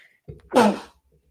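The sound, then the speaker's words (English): A single sudden sneeze: a short intake of breath followed by a loud, breathy burst that fades quickly, with no talking around it. “Sorry, I was trying to hit the mute in time to not sneeze.”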